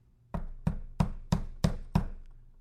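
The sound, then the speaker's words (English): Six firm knocks on a door in a quick, steady rhythm, solid with a hollow thud, each one ringing briefly before the next. No one speaks. “And so Jesus stands at the door of this church.”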